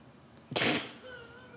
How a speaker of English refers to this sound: I don't know what, I'm sorry. But you know, God bless you.